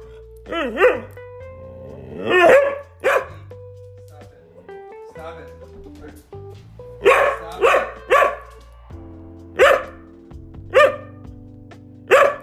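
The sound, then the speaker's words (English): A dog that needs to poop barks repeatedly, about nine sharp, loud barks in uneven bursts and quick pairs, with short pauses between them and a low steady hum underneath. “That's the sound of a dog that needs to poop.”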